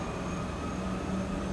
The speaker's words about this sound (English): Child, what's happening? I don't know if y'all hear that. But this ambulance is going crazy.